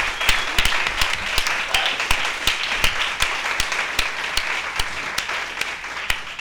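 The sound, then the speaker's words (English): An audience applauds steadily for several seconds, a dense wash of clapping with sharper individual claps popping out, fairly loud and even throughout with no talking over it. “All right, can we do one more round of applause for”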